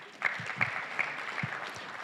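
A crowd applauds with a steady wash of many hands clapping together, a few sharper claps standing out now and then, all at moderate volume and with no voices over it.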